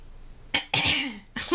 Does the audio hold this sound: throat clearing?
yes